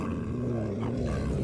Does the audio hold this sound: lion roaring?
yes